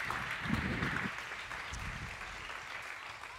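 An audience applauds steadily to welcome a guest speaker at its 15-year celebration, a dense wash of many hands clapping that holds at an even, moderate level for the whole stretch, with no voices standing out.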